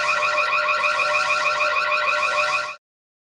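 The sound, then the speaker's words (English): A loud electronic alarm blares continuously for nearly three seconds, a rapid pulsing, buzzing tone with steady volume, then cuts off abruptly into silence. No voices are present. “So let's start the alarm.”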